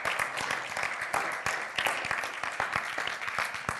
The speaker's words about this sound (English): Will you just give a clap offering to him if he is listening?